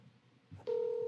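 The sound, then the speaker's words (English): After a moment of faint background noise, a loud, steady electronic ringback tone from an outgoing phone call to a friend starts and holds to the end, clear. “It's ringing.”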